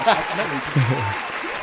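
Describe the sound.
A short round of applause, a steady wash of clapping lasting under two seconds, with a voice talking over it.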